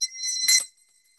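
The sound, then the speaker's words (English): A single bright bell ring marks the end of a timed three-minute (180-second) round in a talking game, sounding when a speaker is still talking, a high, metallic tone that rings for under a second and then quickly fades. No voices are heard. “In comes the bell.”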